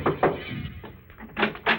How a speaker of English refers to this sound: One night I saw a big house shining in the moonlight. I decided to take a chance. I knocked at the door.